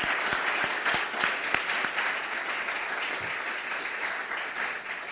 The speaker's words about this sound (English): So please, a round of applause for Mr. Benjamin Payne before we get started.